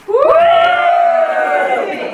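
An audience cheers loudly: a swell of high-pitched whoops and screams rises quickly and holds steady for about two seconds, with no one speaking over it.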